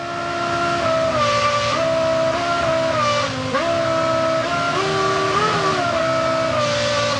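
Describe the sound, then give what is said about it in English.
A real car engine, not a computer simulation, drones steadily, its pitch dipping and rising a few times as it revs up and down and its RPM is changed and held like musical notes, with no voices over it. “Oh, that's a real engine.”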